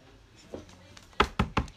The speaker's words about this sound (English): Finally, we heard a knock on our door.